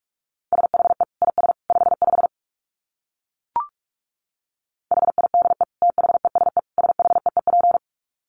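Rapid Morse code at about 45 words per minute: a steady mid-pitched tone keyed into quick dits and dahs, sent in two bursts separated by a pause with a single faint click.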